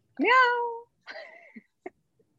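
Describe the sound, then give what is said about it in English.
A male house cat sitting outside a door lets out two drawn-out, wailing meows, the first long and loud, the second shorter, followed by a couple of brief soft taps in otherwise quiet surroundings. “He just will sit outside the door and scream.”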